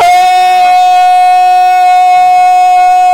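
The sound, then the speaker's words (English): A personal rape alarm blares in a car, a loud, piercing electronic tone held steady and unbroken for the whole stretch, with a harsh buzzy edge and no voices over it. “Everyone's partially deafened by Stitches' rape alarm going on.”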